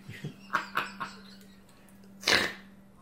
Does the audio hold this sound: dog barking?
yes